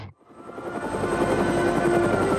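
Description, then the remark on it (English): A helicopter's rotors beat loudly and steadily, a rapid rhythmic chopping over a droning engine whine, rising in from a brief moment of near silence. “get in the helicopter!”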